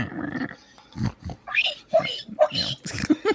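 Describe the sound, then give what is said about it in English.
A person's voice mimics a pig, making a run of short grunting oinks and higher squeals in quick, uneven bursts, fairly loud. “This is how low we have come on this show that we are doing pig impressions.”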